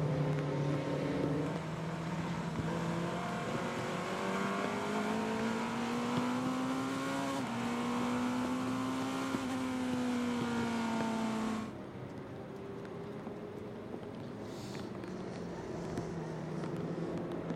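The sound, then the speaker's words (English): A Porsche Penske Motorsport race car engine holds a loud, very steady throttle with a rising, sustained tone, then drops sharply to a lower, quieter drone near the end. No talking. “Listening in to the throttle of the Matthew Jaminet driven Porsche Penske Motorsport. Machine, and it's very, very steady application.”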